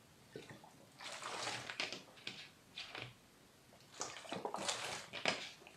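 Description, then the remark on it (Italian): Wet slurping and gulping as someone takes a small sip of water, several short sloshy bursts separated by brief pauses, fairly quiet and with no talking. “Va bene signori, partiamo subito, bevo un goccino d'acqua e direi che ci siamo.”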